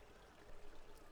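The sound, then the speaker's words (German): A soft, steady trickle of water from a fountain splashing gently. It is quiet and continuous, with a slight swell partway through and no voices. “Das Wasser des Brunnens ist so klar, dass zwischen den sanften Wellen der goldene Glanz von Mora-Münzen zu sehen ist, welche am Boden ruhen.”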